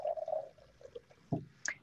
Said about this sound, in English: I'm going to add a little bit more water.